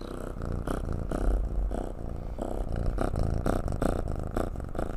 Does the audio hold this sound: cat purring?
yes